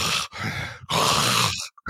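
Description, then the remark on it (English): A voice mimics a man's heavy, labored breathing, which sounded like sleep apnea while awake: a few loud, raspy inhales and exhales with a grunting, groaning edge. The last breath trails off into short, faint catches. “His normal breathing sounded like he was just having sleep apnea, like awake apnea, I guess.”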